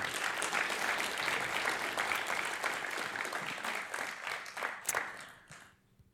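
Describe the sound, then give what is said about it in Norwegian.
A room full of people applauds after a song, a dense wash of many hands clapping at once, then the clapping thins out and fades to near silence over the last second. “Dere fortjener en applaus.”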